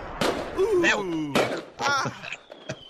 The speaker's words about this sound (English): How about some fireworks? Oh, my God. There we go. Yay. Oh, beautiful. Oh, wow.